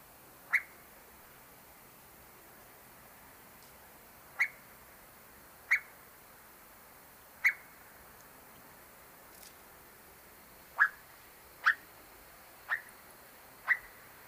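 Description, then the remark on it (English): Eastern whip-poor-will giving about eight short, sharp cluck-like calls, spaced irregularly with gaps of a second or more, each a brief mid-pitched knock against a quiet background with no talking. “It will also give a variety of standalone cluck-like calls, too.”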